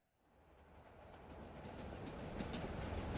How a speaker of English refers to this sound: and that night two trains departed from Richmond. The first carried the Confederate president, members of the Confederate government, and important documents. And the second was all that remained of the Confederate treasury.